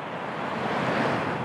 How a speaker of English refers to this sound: The chill of the waves enveloping your feet as you step from the hot, stinging, dry sand to the cool, wet sand where the ocean waves crash and fizzle out.